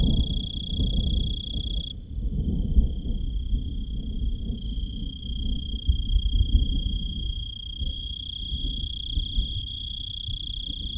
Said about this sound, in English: And the crickets also were sensing the vibrations of the thunder and doing their own trills and their own performance.